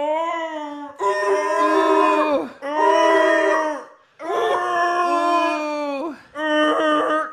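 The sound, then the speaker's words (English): A human voice lets out four long, drawn-out wailing moans with strong harmonics and bending pitch, imitating a whale call, loud with short breaths between them. “He shows us that he knows how to talk to whales.”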